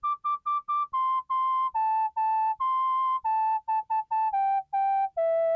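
A synthesized MIDI whistle plays a simple melody of clean, separate notes, some quick and repeated, others held longer, stepping up and down in pitch, clear and alone with no voices.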